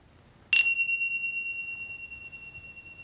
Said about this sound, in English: Listening for the sound of the bell to return some movement, perhaps to your fingers and toes.